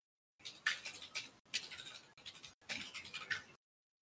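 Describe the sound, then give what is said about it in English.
Rapid clacking of a Ducky One 2 Mini mechanical keyboard being typed on while something is looked up, in three quick bursts separated by brief pauses, with no voices. “While I'm looking it up, I am clicking on my Ducky 1-2 mini keyboard that I got that we never talked about.”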